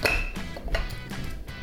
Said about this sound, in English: I think I can open it on this. Here's how to open a bottle on the table.